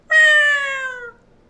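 A single loud, close cat meow, drawn out for about a second with a slightly falling pitch, then silence.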